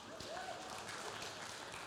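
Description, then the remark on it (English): An audience claps in a steady, dense wash of many hands, a continuous crackle of fairly even loudness that lasts the whole short moment without a break. “I'm not sure what that clapping is about.”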